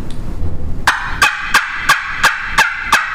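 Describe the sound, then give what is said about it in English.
A loud, sharp series of turkey yelps from a turkey call, made with separated bursts of air pulled back with the throat, seven evenly spaced raspy notes ringing out in quick rhythm after a brief low rumble, piercing. “Now, when you do Yelp, are you a continuous flow of air, or is it separated? It's separated, and I'm pulling the air with my throat, pulling it back with my throat.”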